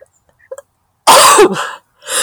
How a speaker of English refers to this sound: Oh, there we go. That was an abortive sneeze. Made the chimes ring. Sorry. I should lean away from the microphone when I do that. I apologize. It's what I get for being out in the garden.